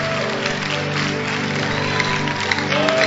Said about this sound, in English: Clap your hands. Celebrate the Lord.